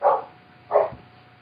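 A dog barks twice, two short, clear woofs spaced under a second apart, moderately loud, with only quiet background between them and no talking.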